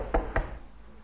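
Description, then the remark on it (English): A preacher stamps his feet twice on a floor to imitate impetuous children: a quick thud-thud with low booming impacts, each ringing out briefly before fading into quiet room noise. “You know, stamping their feet like this.”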